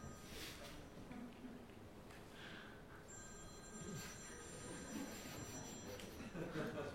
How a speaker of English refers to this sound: Is that whose phone is that? That's probably my phone. Oh, I don't know.